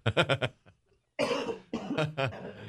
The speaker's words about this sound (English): Sorry for coughing in the microphone. You need some water? I can get some water if you need some. Okay. Yeah. Right. Still working my way off this little cold that's going around.